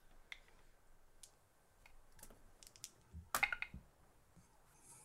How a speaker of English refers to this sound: Roll percentile dice, please.